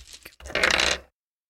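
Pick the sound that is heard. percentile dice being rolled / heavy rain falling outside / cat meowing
percentile dice being rolled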